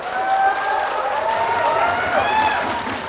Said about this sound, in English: I don't know why you're clapping like someone who's an obedient slave.